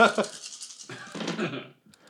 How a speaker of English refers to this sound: This is the most dice I get to roll is when I do investigations. I'm so glad I'm a detective.